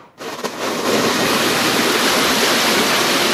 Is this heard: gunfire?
no